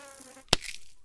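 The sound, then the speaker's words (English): A mosquito on the back of a person's arm gives a thin, high whine that hums steadily for about half a second, then cuts off with a single sharp slap, followed by faint hiss. “Don't move, there's a mosquito on the back of your arm.”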